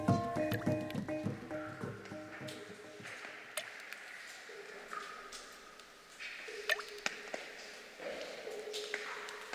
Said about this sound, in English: We leave you this week with a few well-chosen drips. Well, more than just a few, really. It's the resonant chorus of water dripping into pools in a cave, recorded by Jean-Luc Harel.